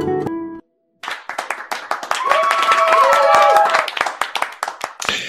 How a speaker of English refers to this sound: And with that signature applause, ladies and gentlemen, if you're tuned in via Fireside Chat, or if you happen to be tuned in via YouTube or LinkedIn or wherever else you may be in this part of the world or even in the next world, welcome to it.